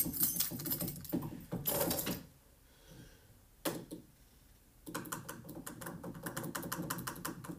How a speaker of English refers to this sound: These are ants marching.